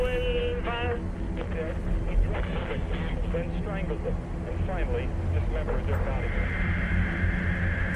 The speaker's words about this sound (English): Well, first of all, the static seeped in more and more, and the voice of the DJ was almost impossible to hear. It sounded like the radio was crossing with someone's CB.